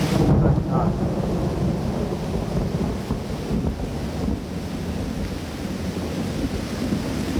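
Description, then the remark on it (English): A steady roar of heavy rain fills the whole stretch, loud and unbroken, with a deep thunder rumble near the start and no voices. “Don't tell me that it's pouring.”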